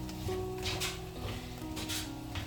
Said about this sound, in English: So, okay, now I've salted. You hear that? It's starting to sizzle. That's good. Let's start sizzling, we can start cooking.